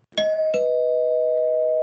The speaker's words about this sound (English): So, I came in very, very cold, but I'm going to ring the bell in 3, 2, 1.